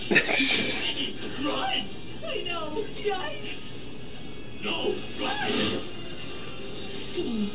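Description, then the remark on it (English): A guitar is smashed in one loud, sharp crash with a bright splintering burst in the first second, followed by people talking over faint, rattling background noise. “Hope that is an expensive guitar.”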